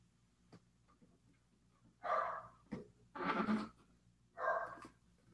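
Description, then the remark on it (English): A dog lets out three loud, drawn-out barks spaced about a second apart, with faint clicks and light handling noises of a box being opened in the quiet beforehand. “The dog apparently likes it, or he saw a rabbit outside.”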